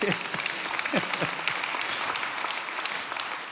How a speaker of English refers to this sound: Can I tell you something? We should clap for that. That's good.